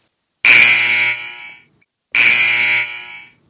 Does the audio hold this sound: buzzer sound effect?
yes